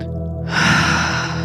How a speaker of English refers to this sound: That's it. Keep breathing.